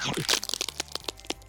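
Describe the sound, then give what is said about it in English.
Teeth gnawing on a big metal lock: a rapid, irregular burst of sharp crunching and cracking clicks, fairly loud, with no one talking. “That lock is really strong! Maybe I can chew through it.”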